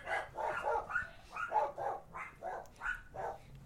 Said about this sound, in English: Or you can let people listen to my dogs, you know.